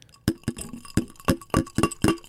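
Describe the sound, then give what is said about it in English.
Glasses clink together several times in quick succession in a toast, bright ringing taps with a short resonant shimmer after each strike and no talking. “more importantly, cheers in front of the mics.”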